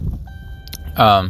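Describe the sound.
A truck starting up: its low engine rumble underlies a single steady electronic warning beep that holds for most of a second before a man's voice starts speaking over it.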